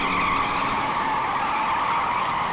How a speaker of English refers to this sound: "Yes, sir," I began to say, but was interrupted by the sound of squealing tires as a black sedan came screeching around the corner.